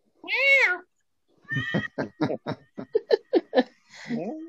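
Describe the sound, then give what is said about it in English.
A cat lets out one clear, drawn-out meow, followed by a quick run of short, laugh-like bursts and a brief rising cry at the end. “Bye, kitties. Bye, kitty.”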